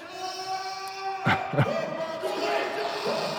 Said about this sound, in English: Okay, there's a pro-Croatian crowd. You know, there's a nice little post-game event happening here tonight.